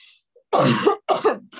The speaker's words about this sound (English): Hold on. I'm going to cough really quick.